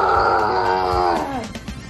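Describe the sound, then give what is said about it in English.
Young voices let out a loud, sustained roar in imitation of a tiger, held for over a second before the pitch drops away and breaks into a few ragged, growly bursts. “attempting to be tigers as well this morning.”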